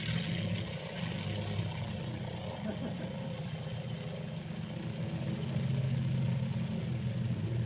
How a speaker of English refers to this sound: Not quite the earliest engine type that the Royal Flying Corps used, but pretty much so. That's the engine of a Curtiss Jenny for anybody who knows about First World War aviation.